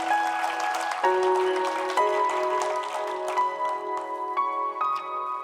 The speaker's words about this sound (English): Let's give the Lord a big hand clap this morning.